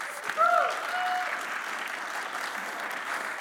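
A crowd applauds steadily, a dense wash of clapping that holds at an even level throughout, with a brief tonal squeal rising near the start.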